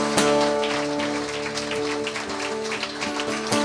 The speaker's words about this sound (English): And all God's people said, will we give those guys a round of applause?